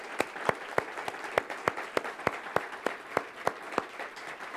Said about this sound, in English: So right now, you know what? Anybody who served, if I could have you please stand. Yes. Big round of applause.